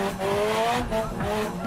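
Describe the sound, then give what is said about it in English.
A car engine roars loudly as tires squeal in a long sideways slide, the car drifting with its back sliding, the pitch rising and falling with the revs throughout, continuous. “Drifting is the art of driving a car sideways.”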